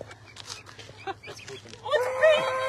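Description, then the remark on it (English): A chicken calls in a short burst of bright, tonal clucking near the end, following a stretch of soft murmuring voices and rustling. “Yours is funky too. A little funky chicken.”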